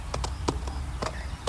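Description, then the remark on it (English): Horse hooves clip-clop in a loose, uneven rhythm from a horse with a rider on its back, several sharp knocks over a low, steady background rumble, with no talking. “I wish I could get down from this horse.”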